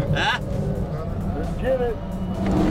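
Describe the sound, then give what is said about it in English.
A pace car's engine roars steadily at speed from inside the vehicle, carrying three-time Indianapolis 500 winner Johnny Rutherford and a 7'1" NBA star to lead the field to the green flag; a loud continuous low rumble with wind and road noise, and muffled voices briefly rise over it. “Then the 7'1" NBA star squeezed into the pace car along with three-time Indianapolis 500 winner Johnny Rutherford to lead the field to the green flag.”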